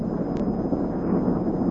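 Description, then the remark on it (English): The engines of a brand new houseboat purr as it moves along, a steady, soft low rumble that holds level throughout, with no speech and no distinct beats or changes. “Nice, soft sound of those engines purring behind me.”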